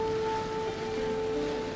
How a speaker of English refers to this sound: I could hardly tell through the rain coming down like crazy. Seems like it hasn't stopped raining since Lady's body was found dead on the street.